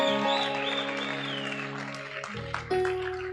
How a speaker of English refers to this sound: And the way they are clapping, is like they don't see this is a concrete, it's a concrete evidence.